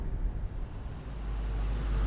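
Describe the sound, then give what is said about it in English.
A car engine rumbles low and steady, then swells louder and fuller as the vehicle picks up speed, with road noise building underneath and no voices. “Nate gave a nod and sped up the car.”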